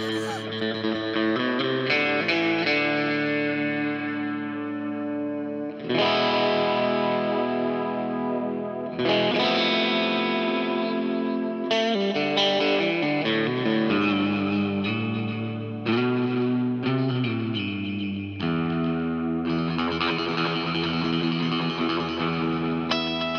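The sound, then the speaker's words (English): A surf-style electric guitar, played through a Strymon Volante reverb, plays ringing chords and sustained notes drenched in spacious reverb and echo, steady and fairly loud, with no voices, changing chords every few seconds. “What reverb did you put on there? That is the Strymon Volante.”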